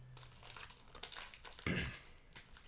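During a blindfolded food-tasting game, a hand is guided into a bag and rummages in it, making a continuous dry crinkling rustle with bursts of sharper crackle. The sound is loudest in one brief crunchy swell near the end. No one speaks.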